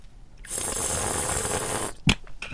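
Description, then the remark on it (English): A sustained slurping hiss of air drawn through a mouthful of wine to aerate it, lasting over a second, followed by a short sharp gulp or click and a faint breathy tail. “And then you want to do that slurpy thing.”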